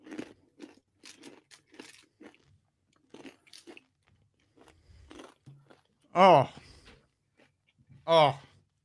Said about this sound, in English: The worst part is that you gotta chew it. Oh. This is terrible. Oh. It tastes nasty.